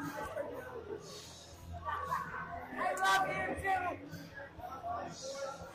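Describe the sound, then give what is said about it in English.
A wrestling crowd cheers and shouts steadily after a tag team championship win, a dense wash of many voices with louder yells swelling around the middle before settling back into a constant roar. “Yeah, the crowd was up for you guys.”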